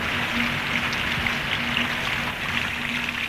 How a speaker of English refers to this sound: rain thunders down out of a grey sky. Milford Track Party number 64, that was our party, has begun a wet tramp down the last stage of the track, the 13 miles to Sandfly Point.